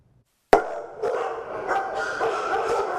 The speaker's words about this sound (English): Before you even step inside, it's the barking that lets you know there's something amiss at the Bakersfield Animal Care Center. The situation here at the shelter is critical right now. We are so overfull.